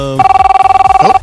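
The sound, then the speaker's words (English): A telephone rings once as a caller phones in, a loud electronic trill with a rapid fluttering pulse that lasts about a second before cutting off. No one speaks over it. “Answer the phone when he calls in.”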